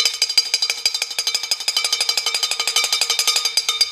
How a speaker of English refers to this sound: Okay, so, pipe, file, obnoxious noise.